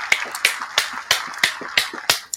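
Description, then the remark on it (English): Steady hand clapping, about eight sharp claps in an even rhythm, fairly loud, with no voices, more like one person applauding than a crowd. “So we're going to give y'all a round of applause for being so dope.”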